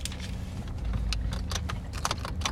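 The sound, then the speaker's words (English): Steady low engine and road rumble fills the interior of a moving car, with short bright jingling clinks, like keys, scattered on top. No one speaks. “Again, we're in my car.”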